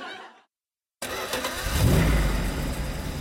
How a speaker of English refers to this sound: Turn off the engine, Detective.